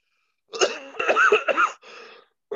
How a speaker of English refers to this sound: So you got me laughing so hard I'm coughing, man.